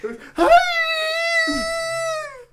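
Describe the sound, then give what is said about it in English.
A male dog gives a long, high-pitched whimpering, wheezing whine instead of barking, steady and strained for about two seconds after a short yelp-like onset, fairly loud, excited as someone walks or drives by. “He won't actually bark. It's just like wheezing.”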